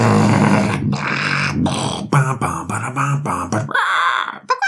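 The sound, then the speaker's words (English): A voice growls and roars in imitation of the dragon Drogon, a string of rough, throaty bursts with short breaks between them, loud throughout and ending in a raspy, hissing exhale. “You know, dragon sounds.”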